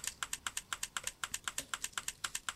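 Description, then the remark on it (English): A WhatsApp typing indicator sound, heard while a person is typing a message: a quick, steady stream of crisp keyboard-like clicks, about eight per second, clear, continuing evenly with no voices. “When she has stopped, the typing sounder stops.”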